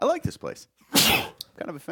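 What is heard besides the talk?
sneeze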